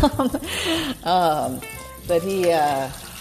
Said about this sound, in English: Now I'm in my sink. Sorry. Boy, you guys are really along for the ride today. Cleaning out the parrot water bowl.